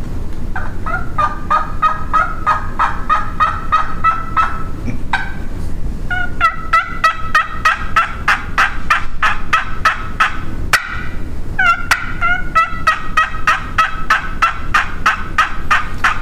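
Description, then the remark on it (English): A soft imitated turkey call: quick, rhythmic strings of raspy yelps and clucks in two long runs separated by a short pause, clear with no talking. “I mean, that will strike a turkey. A turkey will gobble at that at unbelievable distances.”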